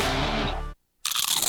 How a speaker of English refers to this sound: You know that sound anywhere. It's the crisp crunch of that first nacho chip.